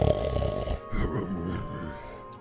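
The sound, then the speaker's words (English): Loud, deep snoring from about a dozen ogres at once in a stone room, overlapping into a continuous rumbling, growly drone with uneven swells, filling the space. “The rest are snoring loudly as.”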